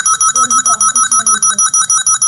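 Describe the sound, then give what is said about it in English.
A loud game show buzzer sounds as a rapid, steady string of electronic beeps, about fifteen pulses in two seconds, with faint voices talking underneath. “Why you hit the buzzer, man?”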